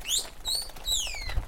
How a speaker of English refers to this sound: Tell your blue bird to mind his business. They're a mockingbird. Leave Coda alone.